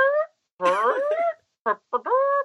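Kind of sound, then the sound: vocal imitation, voice imitating a fart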